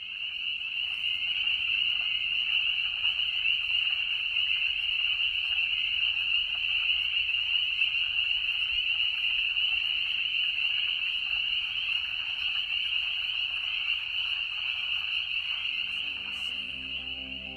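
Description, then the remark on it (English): A dense, continuous chorus of frogs at Lake Griffey in May 2021, trilling together without pause, a steady high-pitched wall of calls that stays loud and even throughout, with no voices present. “You've been listening to Frogs Chorusing at Lake Griffey, May 2021.”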